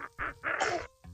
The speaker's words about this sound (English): God bless you